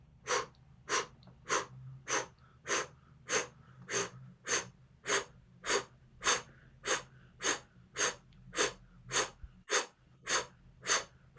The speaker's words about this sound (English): Now we're just going to start the blow breath. Breathing through the diaphragm, just out.